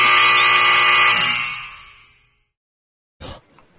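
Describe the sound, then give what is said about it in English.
A loud, harsh game-show wrong-answer buzzer blares for about a second and a half, a dense raspy tone that fades out, followed by a brief sharp click or thud after a pause. “I know it's coming, damn it. X me, man. I just X me.”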